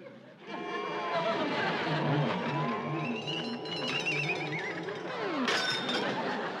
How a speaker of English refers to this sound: And then she tries to levitate the teacup with the same spell, but the teacup crashes to the floor.